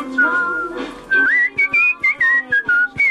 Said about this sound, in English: He's good. He's got a very strong whistle.